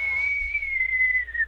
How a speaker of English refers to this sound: Yeah, it's very cold here in Sugarloaf today. Yeah, it sounds a little windy.